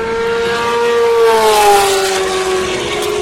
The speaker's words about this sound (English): Now, what I'll do is just sit here and let you listen to the cars as we wish you good night.